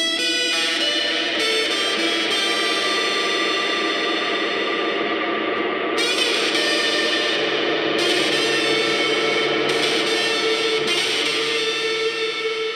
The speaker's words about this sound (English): Maris Mercury 7. You should totally get one of those if you're in need of some real cool reverb-y noises.